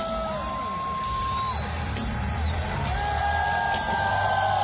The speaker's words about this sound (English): The last thing I want to hear is how this fired up It may be loud. Let me. Everybody cheering.